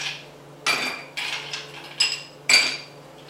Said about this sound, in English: we've got a very cold mixing glass, just pulled out of my freezer. We're going to break a couple of cubes in there so we get a certain amount of dilution, because we want a little bit of that in our cocktail. Fill it up with some nice big ice cubes.